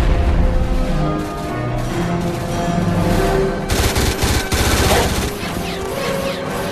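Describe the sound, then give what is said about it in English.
A loud explosion bursts out partway through, thick with rapid gunfire and dense battle noise that stays heavy from start to finish. “Big explosion. Yeah, it didn't hurt anybody, though.”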